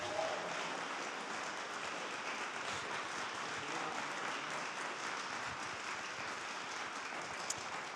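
audience applauding

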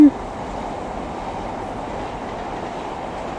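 train passing

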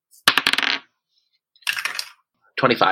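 dice being rolled

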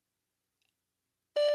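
voicemail recording beep

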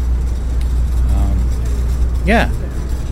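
street traffic

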